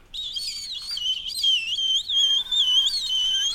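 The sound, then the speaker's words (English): A high, warbling whistle blown through the teeth, sliding and trilling continuously for a few seconds with slight breathy texture, fairly loud, no talking. “A little bit of a little bit mouth whistle, teeth whistle.”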